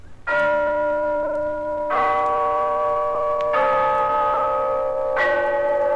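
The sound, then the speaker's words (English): The town hall clock in Glen Falls chimes four slow, resonant bell tones, each struck about a second and a half apart, ringing out clearly and lingering so the notes overlap, with no voices. “there's the clock in Glen Falls Town Hall, telling us it's time for Renzo's story of Big Sister”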